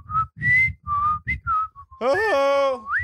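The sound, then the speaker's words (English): A person whistles a short melody, several distinct notes jumping between pitches, then shifts into a loud, sustained voiced tone that bends upward at the end. “I know you can whistle. Yodel that melody.”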